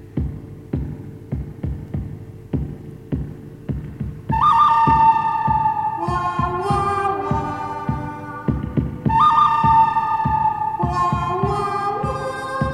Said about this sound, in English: this is the original version from the movie The Good, the Bad, and the Ugly